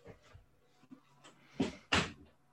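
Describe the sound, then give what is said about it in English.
A door shuts twice in the background, two sharp thuds close together with faint knocks and rustling before them; no one speaks. “Yeah, doors shutting in the background is always sorry about that, a nice aesthetic.”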